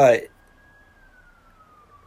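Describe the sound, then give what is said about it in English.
A brief burst of speech, then a faint police siren wail: a single thin, steady tone that slowly slides downward in pitch over about two seconds. “You hear the sirens even as I record, perhaps.”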